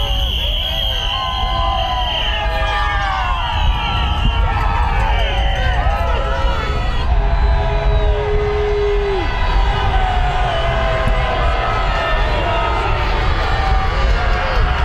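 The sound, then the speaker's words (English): A dense street crowd of critics cheers and shouts continuously as President Trump is driven home from golfing in Virginia after losing the election, with scattered whistles and whoops rising over the din and a brief horn-like tone partway through, all loud. “He was golfing in Virginia, driven home past his critics cheering.”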